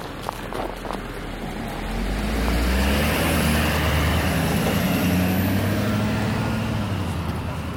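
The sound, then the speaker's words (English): A large truck rumbles past, its deep engine growl swelling over a few seconds and holding steady, with a faint whine above the low roar of the road. “What's on in board of that truck?”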